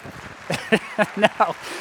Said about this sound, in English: No. That is a sympathy applause, and I don't accept it.